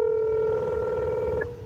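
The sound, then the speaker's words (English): A phone line's calling tone as a woman calls her new boyfriend's phone during her live stream: one steady, mid-pitched electronic hum that holds evenly for about a second and a half, then abruptly cuts off. No one speaks over it. “goes to call her new boyfriend on the phone during her live stream.”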